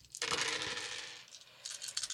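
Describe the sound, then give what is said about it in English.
Six dice are rolled for a soak roll in a game, clattering and tumbling across a hard tabletop in a sustained rattling burst, followed by a few lighter clicks as they settle. Fairly loud, with no voices. “gets 6 dice okay. for his soak.”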